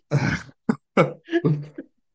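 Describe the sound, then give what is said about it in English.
A loud bout of coughing: a harsh first cough followed by three more rough, throaty bursts in quick succession, with no talking. “Sorry, I've got a nice shitty cough that I've got.”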